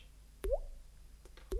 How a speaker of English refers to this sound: little things of rock that are pointy on the ceiling, and they were falling, drip, drip, like that. They could hear the sounds of dripping water. And it was going right into little pools of water down on the ground.